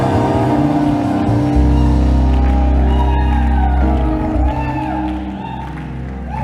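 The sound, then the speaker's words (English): A large audience at a Christian prayer service roars with screams, whoops and cheering as the preacher urges them to scream, a dense, sustained wall of crowd noise over a deep low rumble, with scattered high-pitched shouts rising above it. “Come on, scream like your voice is yours.”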